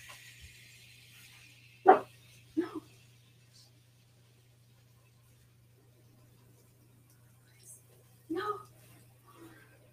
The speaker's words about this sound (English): Please. No more barking. You guys, I'm so sorry about all the barking today.